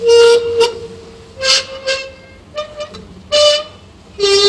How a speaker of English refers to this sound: and you wet it, you can rub your fingers on a glass and it will make a musical note. Well, it will make a note of sorts. So I've just got some ordinary tap water and some glass rods.